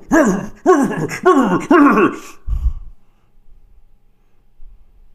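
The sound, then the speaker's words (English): A dog lets out four loud, whining barks in quick succession, each rising then falling in pitch, followed by a soft thump and near silence. “Luna does not like when you talk bad about Hunter Biden”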